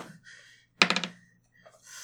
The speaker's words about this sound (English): Hear that, folks? Hear that crunchy noise? That is sourdough bread. I didn't have to leave the table. It's sitting right here still in the bag. Found it.